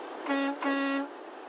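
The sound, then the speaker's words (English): Two loud, deep horn blasts from a Walmart truck out on the road, the first short and the second longer, each a steady harmonic tone sounding over a constant road rumble, with no talking. “I'm currently on the road, literally, which is why it's probably noisy in the background.”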